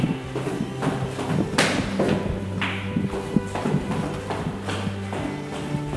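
Footsteps tread across a hard floor with dull thuds and clunks as the first heavy security door into a restricted-access area is worked open, over a steady low mechanical hum. No one speaks.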